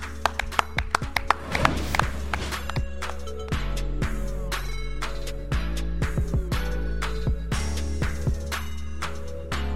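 Irregular, scattered clapping from a few hands, sharp crisp slaps coming in loose bursts for about ten seconds over a steady low hum, with no one talking.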